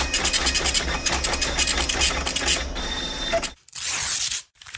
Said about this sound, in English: Supercomputer, please print out a list of ideas for kid stories.